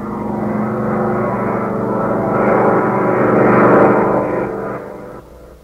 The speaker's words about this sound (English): With a furious roar, the Nazi plane, flown by Chuck and Mud, power dives on the Nazi supply depot.